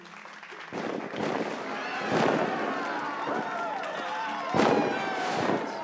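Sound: fireworks exploding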